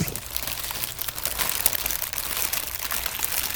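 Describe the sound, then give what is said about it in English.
Steady crinkling of a fast food paper wrapper, a dense stream of crisp, bright crackles with small irregular pops, continuous for several seconds with no talking. “I'm going to crinkle a rapper.”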